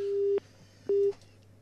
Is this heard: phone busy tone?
yes